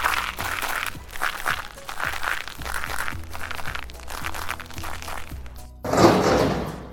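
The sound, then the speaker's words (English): Repeated rattling thunks and knocks of someone trying to open the locked back door of a library, continuing steadily and ending in a louder burst of scraping and crunching. “Look, the back door! Someone's trying to get in!”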